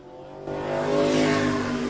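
A yellow and blue number one late model race car at Penticton Speedway takes the green flag, its engine roaring up through its revs, the loud harmonic whine climbing and swelling suddenly after a brief idle, sustained with no voices.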